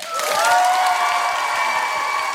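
A crowd bursts into sustained, dense applause with cheering and high whoops layered over the clapping, holding at a steady, loud level throughout.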